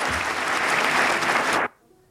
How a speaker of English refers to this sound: And it turned out that what they were doing was holding their breath. They do eventually clap.